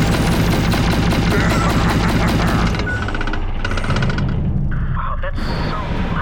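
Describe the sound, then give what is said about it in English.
Heavy rapid gunfire from massive guns in a video game, a loud dense stream of booming shots with regular rapid bursts, briefly easing before another burst near the end. “Yeah, they're massive guns.”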